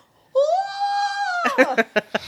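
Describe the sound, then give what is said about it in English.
A voice imitates the scream of someone taking a cold shower: one sustained, rising high-pitched wail lasting about a second, breaking into a rapid series of choppy, gasping bursts. “Yeah, I haven't heard you scream as much.”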